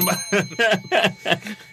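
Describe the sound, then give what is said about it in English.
A bell rings in a quick series of about five bright, metallic dings, loud and close, with no talking over it. “Andy with the bell ring here.”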